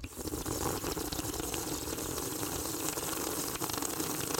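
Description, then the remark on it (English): Water pours steadily into a gravity bong, a continuous gushing and bubbling that holds an even level for several seconds with no voices. “He fills it with water, and he's like...”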